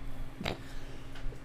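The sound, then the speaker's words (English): A single short sneeze bursts out sharply, a quick explosive blast that fades almost at once, leaving quiet background hum. “Bless you.”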